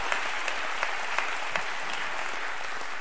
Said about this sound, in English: Somebody clap your hands to the Lord and give Him praise today.